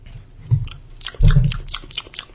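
Wet chewing of a cheese and Nutella sandwich: soft mouth noises with two heavier bites, one brief and one longer, and faint crunchy clicks throughout. No talking.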